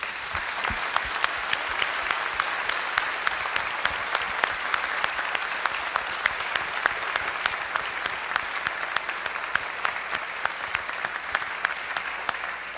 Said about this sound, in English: I think in due respect, I would like us to give a hand to lay people, to the nurses, to the counselors, and to the pastors in this area. Not to applaud them, but to applaud what God has done through them. Would you join me?